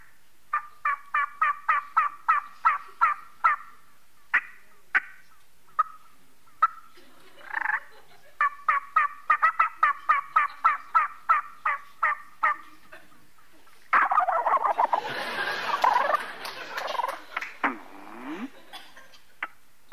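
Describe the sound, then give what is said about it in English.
A turkey game call sounds rapid, evenly spaced clucks and yelps in bursts, then a loud rattling gobble near the end, imitating a gobbler ready to breed. Clear, with no talking. “the sound that a gobbler does when he's ready to breed.”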